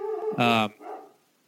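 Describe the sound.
A dog named Dexter lets out one loud, sharp bark, followed by a softer trailing yelp, with faint talking around it, during a recording made from home.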